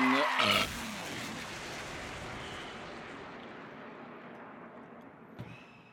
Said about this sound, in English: And then I burped right into the mic, and that's what I say.